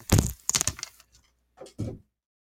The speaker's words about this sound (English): Hold on, let me close the door here in the room. One sec.